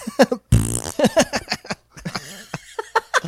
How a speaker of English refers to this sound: Who popped a balloon in here? Whoa. Oh, was it full of farts?